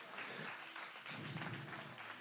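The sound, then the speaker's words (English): A crowd applauds steadily for people coming forward to the altar to pray, dense overlapping clapping at an even loudness for about two seconds, with a faint murmur of voices beneath it. “Come on, give them a hand as they come.”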